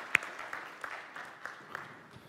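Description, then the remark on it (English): An audience claps steadily for a man coming up on stage to help the speaker, with a dense wash of many hands and a few sharper individual claps standing out. The applause holds at a moderate level throughout without any talking over it. “come on, you can clap for Michael”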